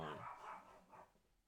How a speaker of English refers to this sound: Oh, yo, tell that dog to shut up. Shut up, Nas.